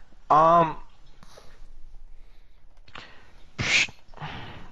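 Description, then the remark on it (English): A dog in the room lets out one loud bark near the start, followed by quieter murmuring sounds and another short, sharp burst a few seconds later. “Yeah, dog.”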